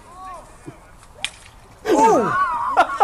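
A quick whipping swish of a flag stick cuts through near-silence, followed by a loud burst of strikes and clattering as the flag stick hits in a fight, with sharp cries and yelps layered over the impacts.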